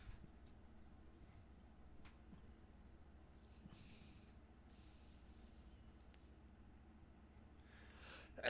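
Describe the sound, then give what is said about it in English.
A single sudden sneeze bursts out at the very end, loud and breathy, after several seconds of near-quiet with a low steady hum and a few faint ticks. “Bless you. That's what I'd ask him.”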